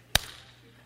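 A single sharp open-hand slap cracks out loud, followed by a brief fading ring and then near silence.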